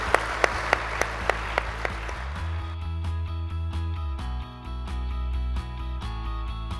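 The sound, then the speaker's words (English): A short burst of conference audience applause for the chairman of the CFTC, with a steady clapping rhythm running through it, soon giving way to loud music with a sustained, tonal beat. “Please give a round of applause to the chairman of the CFTC.”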